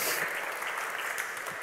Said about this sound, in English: Yeah, give him a clap.